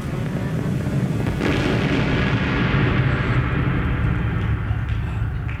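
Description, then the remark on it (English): A full-scale landslide crashing down a precipice towards a gorge below as the earth vibrates: a continuous, loud roaring rumble, with heavy rocks and boulders crashing and tumbling throughout, deep booming low end and gritty scraping debris over nearly six seconds, no voices. “But as the earth continues to vibrate, another joins it, and then another, and now a rock, and then a boulder, and soon it's a full-scale roaring landslide crashing towards the gorge below!”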